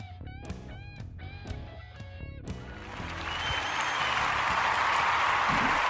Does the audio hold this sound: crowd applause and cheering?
yes